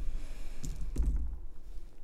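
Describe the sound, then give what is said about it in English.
Dice rolled by players in a game rattle onto a hard surface, giving two quick, sharp clacks a moment apart over a low, steady rumble, with no voices. “And he calls forth, all three of you roll a dice.”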